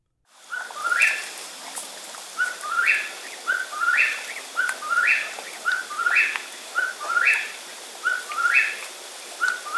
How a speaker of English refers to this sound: All right, so let's talk about some of these birds' vocalizations. I mean, of course, the most prominent one is that classic whippoorwill song.